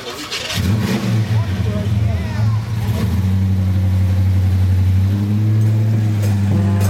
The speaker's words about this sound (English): If you would like to motivate and inspire this group of people with the revving of your truck.